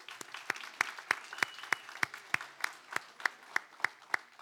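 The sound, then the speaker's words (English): An audience applauds volunteers who lead and teach the kids, with sharp claps landing in a steady, almost rhythmic pattern over a softer wash of clapping, moderately loud and sustained throughout. “And if you'd like to find yourself on the receiving end of that clap, you can talk to me.”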